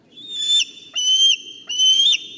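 A bald eagle call: three thin, high-pitched whistled squeals, each about half a second long with a wavering pitch, sounding loud over a faint low background rumble.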